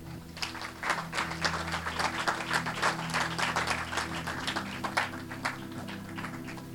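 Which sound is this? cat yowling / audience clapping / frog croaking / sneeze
audience clapping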